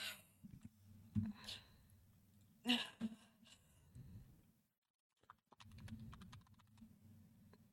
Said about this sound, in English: Oh, God, hiccups.